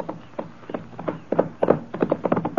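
Horses' hooves clip-clop in a steady, uneven rhythm of sharp knocks, several horses walking together as their riders set off on horseback, with no voices over them.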